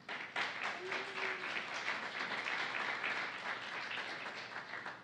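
An audience applauds steadily for several seconds, a dense, even wash of many hands clapping at once, fairly loud throughout and tapering slightly at the end, with no talking over it.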